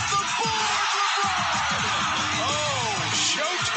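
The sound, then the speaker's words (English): A basketball arena crowd rises to its feet, cheering in a loud, steady roar for nearly four seconds after Pascal Siakam's jumper, with scattered whoops and rising yells cutting through the wash of noise. “Cleanly through for Siakam, and the crowd on its feet.”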